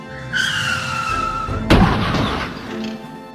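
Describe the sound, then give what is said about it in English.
Tires screech in a long, high squeal for over a second as a car swerves, then a loud crash as Street Boss's men crash into trees, with a heavy thud and crunching, rattling debris that fades out. “Blackwater swerved the car, just barely making the turn. Street Boss's men crash into the trees.”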